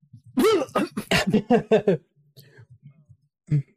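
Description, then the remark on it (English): A voice acts out a character's strained, groaning cough as he coughs up blood: a run of rapid, choppy vocal bursts, then a quiet low mumble and one final short cough. “He tries to groan affirmative to what Dr. Zed says, but just coughs blood onto his own face.”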